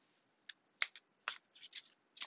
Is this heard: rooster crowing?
no